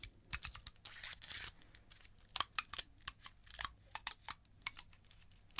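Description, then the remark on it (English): Dry, crisp crackling and clicking as a pine cone is handled, a quick irregular run of sharp ticks and scratchy rustles, fairly quiet, with a brief denser scrape near the start and no talking. “This is a pine cone.”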